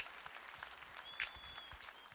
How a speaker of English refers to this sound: Now, do we have any first, second, or third-time visitors here with us today? Please stand. And as they stand, let's give them a hand clap of applause, and let's just show them how much we appreciate them being here.